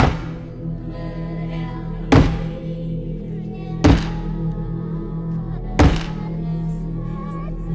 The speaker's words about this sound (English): as Cavendish is hammering through some wood.